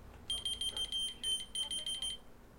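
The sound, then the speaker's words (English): A dollar-store key finder keychain beeping: a rapid run of shrill electronic chirps in short bursts, with a brief gap midway, lasting about two seconds, clear over a quiet background. “It's just literally called Key Finder. I got it at the dollar store.”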